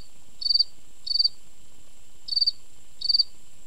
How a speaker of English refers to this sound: And my crickets generally are calling either, you know, like immediately after dusk or right before dawn.